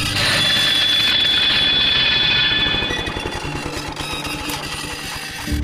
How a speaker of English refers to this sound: I was busy in the workshop while a student was using the lawnmower some 50 metres or so away. Suddenly, from the direction of the mower, came a sharp metallic screech.